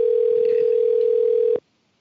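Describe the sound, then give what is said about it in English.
A phone line rings out on an outgoing call: one steady, clear electronic ringback tone holds for about a second and a half, then cuts off into silence with no answer. “He's not even answering the phone.”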